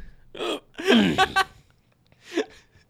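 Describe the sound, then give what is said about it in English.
A few loud hiccups in an uneven rhythm, each a sharp voiced jolt with breathy gasps between them, then a quieter pause before one last hiccup. “I don't get the hiccups often though, but when I do they come fierce.”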